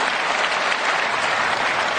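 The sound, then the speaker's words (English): Steady, dense applause from a large audience, played as a soundbite triggered from an iPhone, many hands clapping at once in a continuous wash of sound that holds level for about two seconds before cutting off abruptly. “And you hear the applause there, right?”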